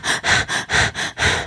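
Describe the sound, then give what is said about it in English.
Quick, rhythmic breathing: about six sharp, airy breaths in and out in a second and a half, fairly loud, like deliberate panting, with no talking. “Sound can build up energy like or like rapid breathing.”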